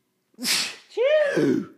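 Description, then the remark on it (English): A single loud sneeze: a sharp breathy burst followed by a voiced, drawn-out tail, with no talking around it. “Bless you.”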